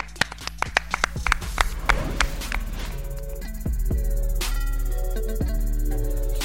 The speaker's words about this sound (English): Clap it up.